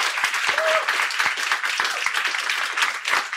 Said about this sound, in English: Okay, Jill Filipovich and Scott Winship, thank you so much. Can we have a big round of applause for them?